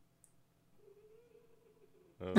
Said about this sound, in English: Hey, cat. I got a cat right here.